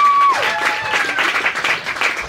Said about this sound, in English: So another round of applause for all our storytellers